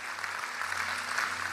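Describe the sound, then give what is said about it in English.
A large church audience claps steadily to celebrate everybody who said yes that day, a dense, even wash of applause that holds at moderate volume throughout, with a faint low hum beneath. “Come on, let's clap for everybody. Come on, really celebrate everybody that said yes today.”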